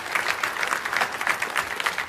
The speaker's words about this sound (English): My hope is to hear the trumpet blow. How about you? I'll wait. If that's you, clap your hands. If not, okay, fine.